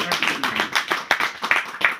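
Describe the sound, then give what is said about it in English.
A single person claps steadily, about eight or nine sharp hand claps in a quick, even rhythm lasting a couple of seconds. “I can clap now.”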